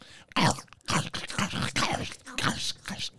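Loud, irregular crunching of chips being chewed during a chip-tasting guessing game, a run of harsh, crackly bursts roughly every half second, with some mouth noise mixed in.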